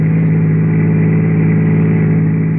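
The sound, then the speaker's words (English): A car engine runs steadily at a constant low pitch, a loud, continuous droning hum with no voices, as a car drives late in the evening in the Pacific Palisades. “late that evening, I found myself out on the Pacific Palisades with Henry Eichelberger, boy, in the back of the car”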